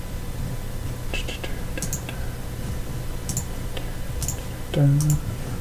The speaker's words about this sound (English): Pushing buttons, trying to fix stuff.